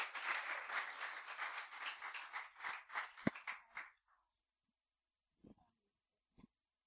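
An audience applauds, a dense wash of many hands clapping for about four seconds before it tapers off into quiet, broken only by a couple of brief soft thumps.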